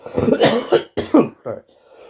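A man coughs hard several times in a rough, uneven burst of four or five harsh, loud hacks, trailing off into quiet at the end.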